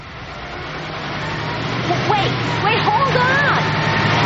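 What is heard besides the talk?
truck engine pulling up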